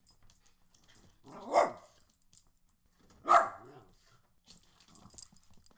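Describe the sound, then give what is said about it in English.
A female dog, reacting to being given a cinnamon Oreo, lets out two loud, drawn-out barks about two seconds apart, followed by softer, scattered vocal noises near the end. No one speaks. “Wow, that was exactly what I expected to hear out of your dog.”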